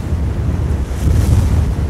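A fierce snowstorm roars steadily for two seconds, a dense low rumble of buffeting gusts that swells slightly midway, with snow slashing against a hut door; loud, with no voices.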